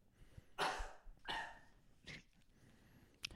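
A person coughs three times in quick succession, fairly loud, with a short raspy burst at the end; no one speaks.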